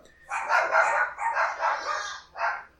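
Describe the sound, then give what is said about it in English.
Two dogs bark in a quick run of loud, drawn-out, yelping barks, one after another for a few seconds, with a final separate bark after a short pause. “See the one dog goes, I think I heard something. And then the other one goes, he heard something.”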